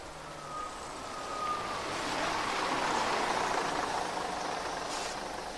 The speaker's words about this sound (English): scurried to the bus stop to catch the midnight bus. Just as he gets there, a bus arrives from the fog.